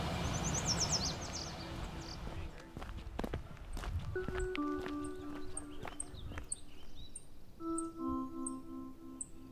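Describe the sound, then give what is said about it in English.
A yellow warbler sings a quick run of bright, high chirps, then thin high notes repeat at a steady pace, over crunching footsteps of people hiking along the shore of Grinnell Lake and faint outdoor noise. “So we're hiking along the shore of Grinnell Lake, and I'm getting distracted trying to spot a yellow warbler that I can hear but can't see.”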